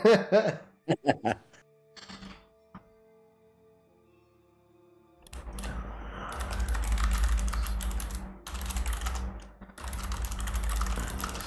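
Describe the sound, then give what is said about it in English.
Quick bursts of typing on a computer keyboard while typing in a game, sharp clicks, then a pause and a louder, denser stretch of rapid key presses over a low rumbling background. “And I apologize. I was typing in game there.”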